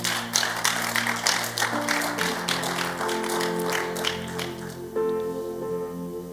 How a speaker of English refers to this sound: I pray for you that your heart will be the type of heart that God can always correct. Give him a mighty clap offering.